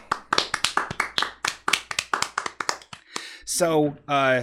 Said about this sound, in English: Everyone, let's clap.